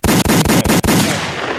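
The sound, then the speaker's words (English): A gunshot sound effect: a rapid burst of loud gunshots, about four or five sharp cracks in quick succession, followed by a fading, rumbling echo. No one speaks. “Where are my gunshots?”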